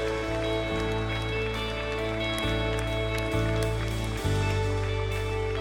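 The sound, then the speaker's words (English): A church audience at Stevens Creek Church claps their hands during a morning worship service. A dense, steady wash of applause goes on throughout, with sustained musical notes shifting underneath and no one speaking. “Come on, let's just clap our hands and celebrate this morning.”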